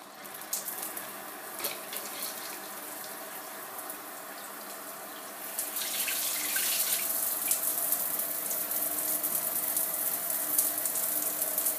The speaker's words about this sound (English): That sounds like a shower to me.